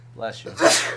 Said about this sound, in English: Bless you. Bless you. One more. Next one's free. Wait for it. Bless you.